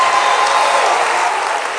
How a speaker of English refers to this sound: But I'm talking about Jesus tonight. I think we ought to give the King of Kings and the Lord of Lords a great clap offering and a great shout of victory tonight.